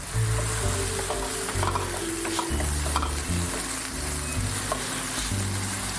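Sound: onions sizzling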